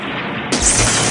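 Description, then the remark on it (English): A steady roar of noise suddenly swells into a loud, rumbling blast about halfway through, like a spaceship in orbit of a planet taking a hit from enemy fire that strikes its main energizer, with the deep boom lingering to the end. “The main energizer's been hit.”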